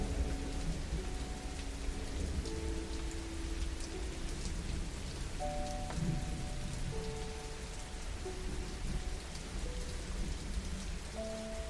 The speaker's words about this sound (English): Now start to picture yourself sitting on the side of a river. Observing the water as it runs downstream.